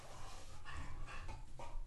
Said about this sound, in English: Dog was going nuts.